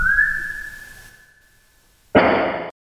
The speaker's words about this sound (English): there was about 45 seconds of silence in between the whistle and the knock